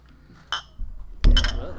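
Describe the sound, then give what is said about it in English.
Glasses clink together in a toast, a bright clink followed moments later by a louder, ringing double tap over a low background rumble. “Cheers to that. Yeah, cheers.”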